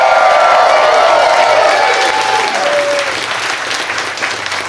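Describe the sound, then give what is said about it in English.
A live audience at Esther's Follies on 6th and Red River in Austin, Texas, at a South by Southwest taping of Doug Loves Movies bursts into loud, dense applause with whoops and cheers, holding steady for several seconds before gradually thinning a little toward the end. “We are still in front of a live audience at Esther's Follies on 6th and Red River.”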